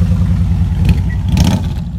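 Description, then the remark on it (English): A police officer's motorcycle engine rumbles loudly and steadily, revving with a mechanical clatter as it drives past people on a walking footpath, with no voices over it. “Cop on a motorcycle just drove past us.”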